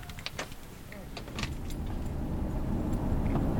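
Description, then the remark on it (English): Keys jingle and a few sharp clicks and thumps as someone gets into a truck, then a low engine and road rumble rises and steadily fills the cab. “Back in the truck”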